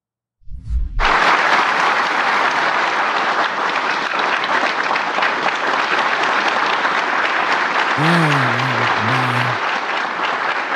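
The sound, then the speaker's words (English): A large audience at a Medal of Honor ceremony, clapping and cheering for the Medal of Honor recipients, breaks into sustained, steady applause that fills the whole clip, with a brief low thump at the start and a short voiced cheer or shout rising above the clapping near the end. “Everybody's clapping and cheering for them.”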